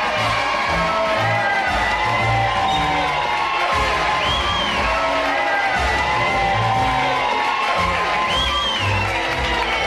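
A loud, dense crowd at Splash Mountain cheers and whoops continuously as Ernest Worrell gets ready to take on the ride, with overlapping shouts and rising yells layered over a steady roar of many voices.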